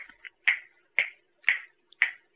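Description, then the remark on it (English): Four crisp, sharp finger snaps on beats two and four of a counted beat land at an even, steady pulse about half a second apart, each one bright and clicky, with nothing else sounding in between. “And then you clap your hands or pat your feet or snap your fingers on the 2 and 4.”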